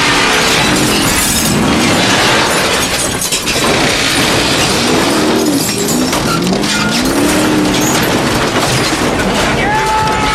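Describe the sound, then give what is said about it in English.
Glass shatters loudly as a car smashes through, with a dense, continuous crunch of debris over a roaring engine and brief rising tire squeals toward the end. “Drive through there! Jesus Christ! Why are you rolling the window out? I know, right? You want to get glass in?”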